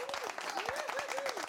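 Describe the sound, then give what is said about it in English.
The audience of the show Callaway Live applauds in a dense, steady wash of many hands clapping, with a wavering, rising-and-falling tone like a whoop or cheer riding over the noise. “Yeah, applaud again.”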